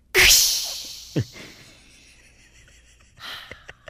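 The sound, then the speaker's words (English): A voice imitates a piston toilet flusher: a sudden loud, hissing whoosh that trails off, a brief low thump, then a quieter breathy exhale with a few small clicks at the end. “Everyone give your impersonation of what you think the piston flusher sounds like.”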